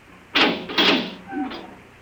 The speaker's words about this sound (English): Open the door. I beg your pardon? The door.